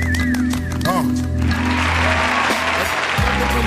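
A crowd bursts into loud, sustained applause that swells after a brief musical, tonal opening and keeps going as a dense wash of clapping until the end.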